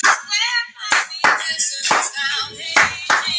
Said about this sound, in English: Now we got clapping today too?